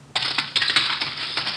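A telephone is thrown out into the hall and hits the floor with a sudden loud crash, followed by a bright metallic clatter and jangle that rattles on for over a second. No one speaks.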